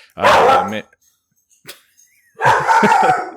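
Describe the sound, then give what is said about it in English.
A female dog gives two loud barks with a short pause between them, the second longer and harsher, plus a faint click in the gap. “That dog is just as angry about Montreal.”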